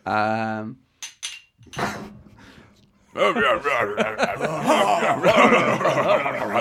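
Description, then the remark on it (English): Foley tavern ambience for the tavern in Daggerdale: a barkeep cleaning glasses, a boy serving drinks, a few sharp clinks of glasses and cutlery, then a swelling din of overlapping chatter and chuckling laughter from a crowd playing dice and drinking, which keeps up to the end. “He's cleaning glass. There's a boy running around serving drinks. We've got excellent Foley here.”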